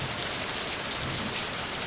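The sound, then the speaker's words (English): Steady, dense rainfall hissing evenly over a peat swamp forest in Borneo (Kalimantan), Indonesia, a continuous wash of countless drops with no pauses, moderately loud, with no voices present. “For millennia, 100 inches of rain a year soaked the soil here.”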